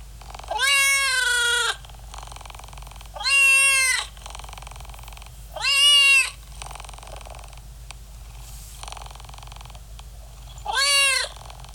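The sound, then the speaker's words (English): A cat meows four times, loud, with long gaps between the calls, over a steady low purr that continues throughout. “Now, let's take it to the cats.”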